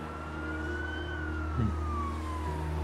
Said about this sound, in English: Siren's coming.